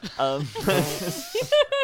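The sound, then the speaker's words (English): A voice makes breathy hissing noises in short bursts, imitating puffs of steam escaping, mixed with brief voiced sounds but no clear words. “I imagine that that there's just sort of a puff of steam that comes out from around me.”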